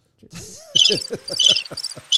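Crickets chirp in quick, high-pitched pulsing bursts, repeating steadily for a couple of seconds, fairly loud, with no voices.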